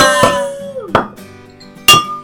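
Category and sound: household object, glasses clinking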